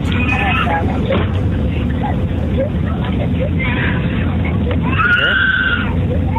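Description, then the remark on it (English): A small child wails in several drawn-out bursts from right behind the speaker's seat on a plane, over the steady low roar of the airplane cabin, with faint murmuring voices in the background. “Right behind my seat. Crying.”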